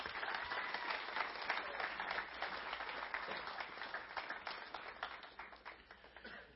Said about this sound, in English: Would you give a round of applause to these guys?